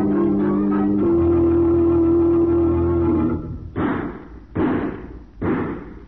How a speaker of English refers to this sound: Shot. What's happened out there?